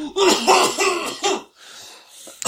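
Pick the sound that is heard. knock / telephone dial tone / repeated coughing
repeated coughing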